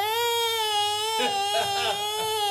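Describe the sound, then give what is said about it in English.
A person vocally imitates a siren-like baby cry heard in a hospital scene: one long, steady, high-pitched wail, then a run of shorter, wavering, oscillating cries, loud and with no other sound. “It sounds like a baby crying at first, but then it sounds like a siren.”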